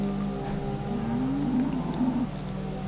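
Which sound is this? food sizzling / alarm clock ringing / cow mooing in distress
cow mooing in distress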